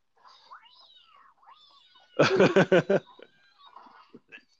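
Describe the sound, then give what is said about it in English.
A cat yowls in a loud burst of four or five harsh, rapid cries, surrounded by quieter wavering, whining calls before and after. “that cat just scratching the hell out of Milhouse.”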